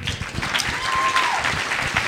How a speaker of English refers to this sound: Man, yeah, you can clap for that.